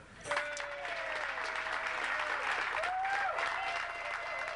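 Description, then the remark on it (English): A large crowd bursts into sustained applause, dense clapping holding steady for several seconds, with a few whistles and cheers rising above it, as single audience members clap in answer to a question. “How many people by applause are single?”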